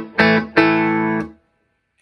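electric guitar

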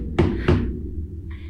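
knocking on a table

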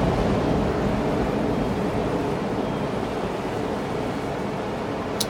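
ocean waves crashing

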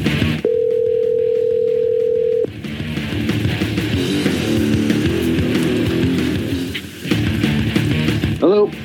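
telephone dial tone

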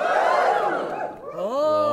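crowd cheering sound effect

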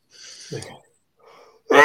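sneeze

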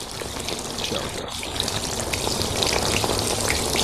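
shower running water

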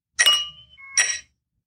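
glasses clinking

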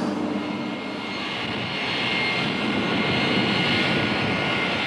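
airplane engine

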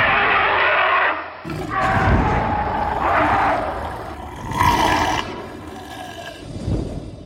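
animal roar

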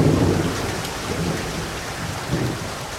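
heavy rain falling

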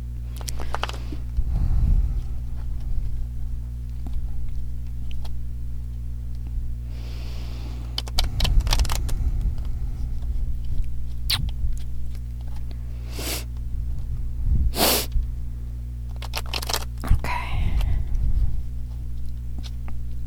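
shuffling tarot cards

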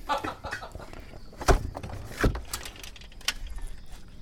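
door being closed

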